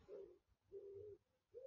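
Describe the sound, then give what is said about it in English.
Doves or wood pigeons cooing outdoors: three soft, low hooting notes in a steady rhythm, with brief pauses between, heard alone without any talking. “So we've got the lovely sound of doves right now, or wood pigeons, whatever they are.”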